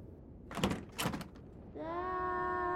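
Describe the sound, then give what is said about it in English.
A bedroom door is shut and bangs twice in quick succession, then a long, steady, high squealing creak follows and holds as the door gets caught on something. “He made it to the bedroom and shut the door behind him, only to hear it get caught on something.”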